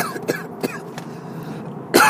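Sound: coughing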